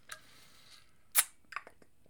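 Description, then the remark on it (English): A quiet sip of water: a soft click, then a sharper wet slurp followed by a few small mouth and swallow clicks, with no talking. “I'll take a sip of water.”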